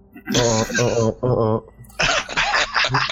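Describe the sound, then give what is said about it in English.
A man clears his throat loudly, starting with two voiced, drawn-out grunts and finishing in a longer raspy, scratchy burst. “Let me clear my throat.”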